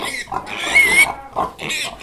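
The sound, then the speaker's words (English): A woman loudly imitates a pig rooting for truffles, producing a run of snorting grunts and squeals in several bursts, with no other talking. “She's rooting for truffles.”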